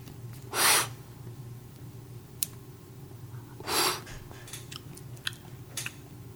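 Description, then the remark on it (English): Two short, breathy first hits of cannabis smoke being inhaled, a few seconds apart, with faint clicks and a low background hum in between; nobody speaks. “Well, while we take our first initial hits of the weed here”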